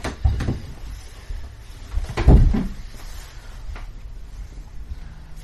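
A door bumps and clatters, with a short knock early on and a louder thud of it swinging shut about two seconds in, then quiet.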